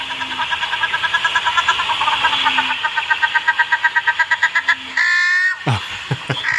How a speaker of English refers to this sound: Yeah, that's the wood duck. That's the wood duck. Or main duck is another name for it. That's the one you see sitting up in trees. It's grey with a brown head or spots on its chest.